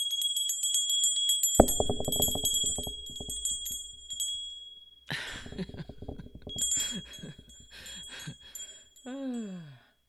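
Bright, high bells jingle and chime repeatedly throughout, with a few sharper clanks mixed in; the ringing is moderately loud, shimmering continuously with some brief bursts of clatter.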